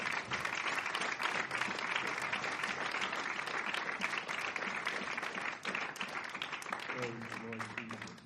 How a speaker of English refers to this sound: He graduated from college on Friday. And God bless you. This is his graduation. God bless you, my precious brother. We certainly love you and appreciate you're proud of us. Let's give him a good round of applause this morning.